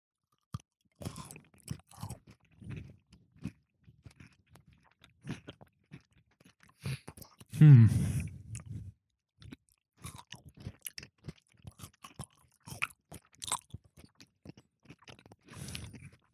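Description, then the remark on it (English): Someone crunches on a crispy snack, with a steady run of sharp, brittle bites and chewing, and a louder, fuller crunch burst midway before the chewing continues in smaller clicks. “Are you ready for this snack? Yeah. It looks very crispy.”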